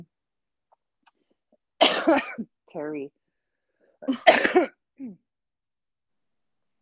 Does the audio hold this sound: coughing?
yes